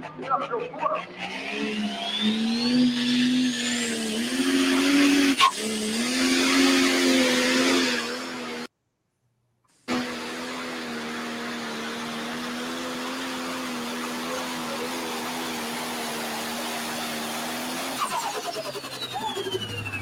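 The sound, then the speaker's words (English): A pro stock pulling tractor engine roars loudly and steadily during a pulling pass, its deep droning tone held for long stretches, with a brief abrupt cutout partway through before the roar resumes and slowly tapers off. “Awesome pass. Well, people don't realize that guy is a hell of a race car driver as well.”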